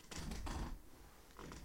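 A chair creaks and shifts as someone gets comfy in it, one longer rustling creak followed by a shorter one after a brief pause, fairly quiet, with no talking.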